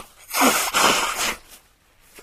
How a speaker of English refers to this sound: Hang on, I've got to blow my nose, hang on.